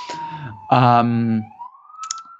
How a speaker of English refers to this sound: Probably you can already hear in the background the sirens coming for them. Little New York style interruption.